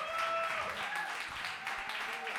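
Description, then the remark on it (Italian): A live concert audience at the Monk applauds: dense, steady clapping fills the whole moment at an even loudness, with a few faint whistles or cheering voices rising above the crowd. “Questo è l'applauso del Monk.”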